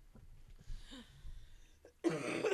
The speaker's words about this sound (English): I don't want to end it on a cough. No. So. No coughing allowed.